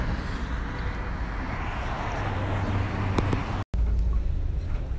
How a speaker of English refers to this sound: Hi everyone, it is 6:52. I'm on the bus. I was on the bus for a little while, but it was early, so we had to wait a few minutes, but we're on our way now, and I'm going straight home